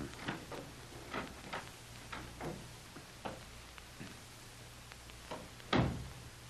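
The door leading to the cellar steps being opened: a run of small clicks and rattles from the latch and hinges, ending in a louder wooden thump near the end, with a low steady hum underneath.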